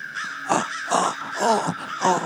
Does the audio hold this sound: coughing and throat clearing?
no